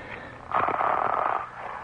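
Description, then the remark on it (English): A raspy, snore-like buzzing rumble swells up for about a second over a thin, muffled phone line, then drops back to faint line hiss. No one speaks. “Is the coach shaving in the background there? Or snoring?”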